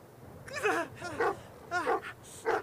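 Dogs attacking a man, slamming into him and clenching their teeth onto him, with four sharp, strained vocal bursts of snarling and yelping in quick succession, fairly loud, with no talking.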